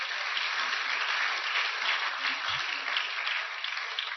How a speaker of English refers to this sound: Praise the Lord. Please clap for Jesus again.